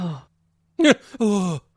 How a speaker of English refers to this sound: The gasp is amazing.